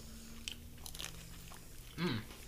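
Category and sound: food or drink, chewing and crunching food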